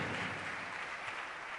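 An audience at a church service claps for the Lord, a dense continuous patter of many hands with no distinct beats, fairly quiet and even throughout, with no voices.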